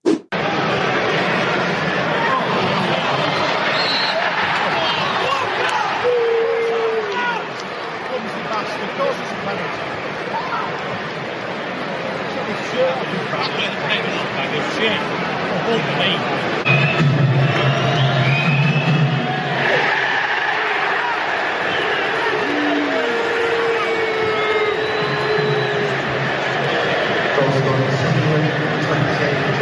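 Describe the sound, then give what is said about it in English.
A loud football stadium crowd at a Sheffield Wednesday match reacting angrily to a penalty being awarded, with a constant roar of voices, scattered shouts and jeers rising above the din, and a few louder surges of noise toward the end. “There's some anger in the crowd, but then there's also like a voice of reason cutting through, which I think just shows where Sheffield Wednesday are at the moment.”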